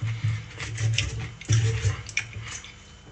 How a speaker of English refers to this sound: Anyway, let me just shave this carrot hair.